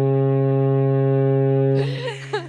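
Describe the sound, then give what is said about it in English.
A single deep, loud foghorn blast holds steady for nearly two seconds, then cuts off as voices and laughter break in over its fading end. “I think that's a foghorn moment.”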